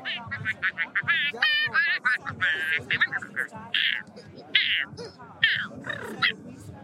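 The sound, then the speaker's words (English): A duck purrs excitedly while being petted on its cheeks, a string of quick, buzzy, trilling calls in uneven bursts that continue with hardly a pause. “So one of the things this duck does when he gets really excited is he purrs.”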